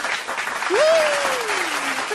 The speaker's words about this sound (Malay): Saya suka vibe-vibe positif awak. Dan itu awak layak menerima satu tepukan.